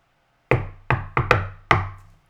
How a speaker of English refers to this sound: Hey, bud, can you do the knock-knock?